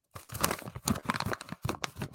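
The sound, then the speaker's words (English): Paper rustles and crinkles as a sheet of homework paper is pulled out and handled, a burst of crisp, irregular crackling lasting about two seconds with no talking. “The listeners can't see it, but I just pulled out a piece of paper to prove I'm doing homework.”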